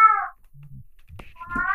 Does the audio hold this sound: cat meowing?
yes